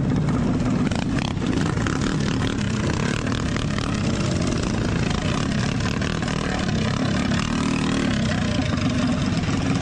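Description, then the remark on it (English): Steady droning of small motorbike (moped) engines in a video of a street scuffle, a continuous buzzy rumble with some revving, fairly loud and dense throughout with faint voices mixed in. “And I'm not sure you could call them either motorcycles or gangs, but these are the people he was fighting.”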